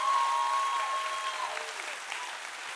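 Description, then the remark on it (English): A church audience claps for the worship team in a steady, dense round of applause that holds for several seconds, with a thin sustained tone sounding over it before fading out partway through. “Hey, how about a round of applause for our amazing worship team”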